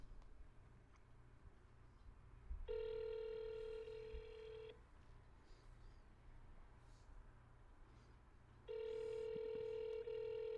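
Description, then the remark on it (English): A phone's ringback tone sounds twice while waiting for a call to connect: steady, buzzy two-second tones separated by a long pause, over a low background rumble. “And it keeps making me think it's your fucking, like, waiting fucking ringtone to, like, get into a call.”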